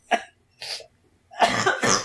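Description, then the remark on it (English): A series of rough, throaty coughs: two short separate bursts followed by a longer, heavier double cough, fairly loud with no talking. “That's a very throaty cough.”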